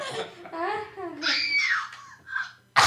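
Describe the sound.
A voice imitates a woman screaming, starting as a wavering wail and rising into a shrill, strained cry before trailing off, followed by a sharp click at the end.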